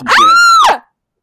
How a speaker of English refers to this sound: … piercing shriek wakes everyone in the camp.